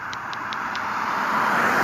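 A car approaches along a road late at night with no other traffic, its steady tire and engine roar swelling gradually louder, with a few faint, evenly spaced high ticks early on and no voices.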